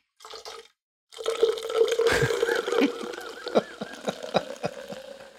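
Water poured from a water jug into a microphone, right up close: a short splash, a brief pause, then a steady, gurgling stream with glugs and splashy bursts that runs on for several seconds.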